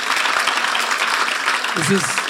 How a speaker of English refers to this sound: We all agree not going to happen. Applaud right now if that's not going to happen.